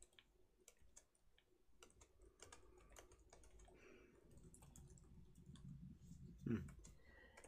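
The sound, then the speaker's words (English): A single sharp sneeze bursts out near the end, louder than the steady background of rapid computer keyboard typing and clicking that runs throughout. “Bless you. Bless you.”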